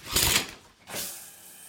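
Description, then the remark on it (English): A shower sprays in the morning in two short bursts of steady, bright hiss with a brief dip between them, with no voices. “Shower.”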